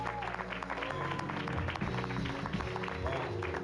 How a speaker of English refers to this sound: Give this orchestra a big round of applause.